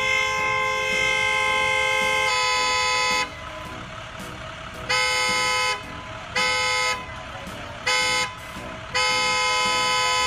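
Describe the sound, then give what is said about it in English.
A driver in Kentucky impatiently honks a car horn while students wait for temperature checks before boarding a school bus: one long, loud blast, then a series of shorter, insistent bursts with brief gaps between them, over steady background noise. “A Kentucky parent actually recorded another Kentucky parent, a driver, impatiently honking his horn as students are waiting for temperature checks before they get on the school bus.”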